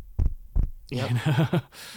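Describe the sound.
A voice imitates a kick-drum heartbeat: two deep, thudding thumps about half a second apart, followed by a brief hummed, tonal vocal phrase.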